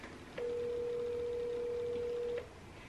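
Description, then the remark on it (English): A steady dial tone from a phone accidentally placing a call without being touched, holding one unwavering pitch for about two seconds, bracketed by faint clicks at its start and end, against a quiet background. “Sorry, I didn't mean to call you and I know you're doing your podcast.”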